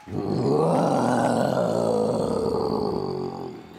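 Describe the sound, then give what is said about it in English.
A person imitates a Tyrannosaurus rex roar, voicing one long, loud, rumbling growl that holds steady for over three seconds before trailing off, with no other sounds. “The Tyrannosaurus Rex has one of the loudest and longest roars around.”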